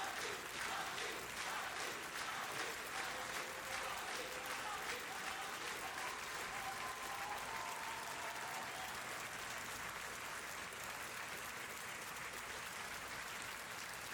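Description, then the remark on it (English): At a speech declaring war against corruption, a big crowd shouts a name together over dense, steady applause and cheering that fills the whole stretch at an even, loud level, with no single voice standing out. “I hear they're shouting his name again.”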